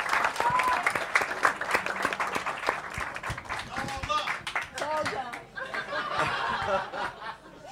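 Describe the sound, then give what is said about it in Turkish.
A concert audience claps steadily in a dense burst of applause for a performer, with scattered chuckles and voices mixed in as the clapping carries on throughout. “bence seni de alkışlayalım ya.”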